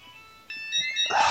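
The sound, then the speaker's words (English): A home phone rings with a bright electronic warble of stacked high tones, steady and moderately loud, growing fuller and busier toward the end of the short burst. “So that's my home phone.”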